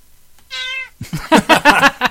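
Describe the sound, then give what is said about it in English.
A short, tonal cat meow gives way to a loud big-cat growl in rough, rasping bursts that pulse several times in quick succession, with no one speaking. “was taking pictures in fields near his home in Cornwall when a huge cat-like creature leapt out in front of him.”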